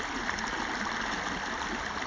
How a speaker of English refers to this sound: The river will keep running. The brook will keep babbling.